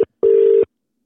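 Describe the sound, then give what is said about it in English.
A telephone ringback tone: a short beep followed by a longer steady electronic tone at one pitch, clear, with no voices. “Yeah, man, answer the phone.”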